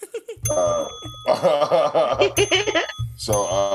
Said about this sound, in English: Make sure y'all hit the notification bell for where to go. Ding, I think that's what we do.